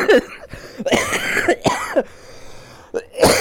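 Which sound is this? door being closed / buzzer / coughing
coughing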